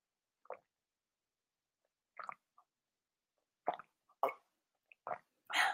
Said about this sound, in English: I'm going to take a sip of my tea really quickly, and then we will close out the live cast. So, mouth sounds.